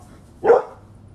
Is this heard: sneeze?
no